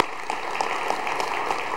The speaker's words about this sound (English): Let's give a round of applause to everybody who helped.